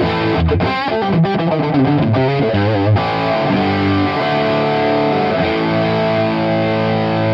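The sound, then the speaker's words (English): Loud, heavily distorted electric guitar thickened by an effect pedal, with the effect turned on and turned up a little, plays a quick choppy riff for about three seconds, then lets a full chord ring out and sustain. No voices. “Let's turn the distortion off, turn the effect back up, and really thickens up your clean stuff.”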